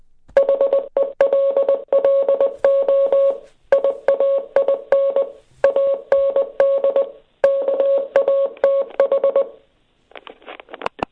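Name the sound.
morse code beeps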